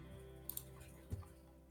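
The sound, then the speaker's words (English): Faint, sparse keyboard typing as someone types in the name of the Myrak Drake variant: a couple of quick, sharp key clicks followed by a softer thud, set against a quiet, steady background hum, with no one speaking. “I was just typing in the Myrak Drake variant into the Pokéflix”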